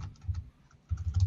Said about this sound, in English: If you think if I even Google it, it's just going to show me. Stop typing. It's killing my brain cells. Just use voice.